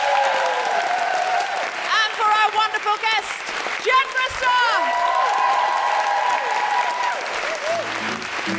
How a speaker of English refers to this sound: Thank you so much, everyone, for coming. And can I have a big round of applause for my guest co-host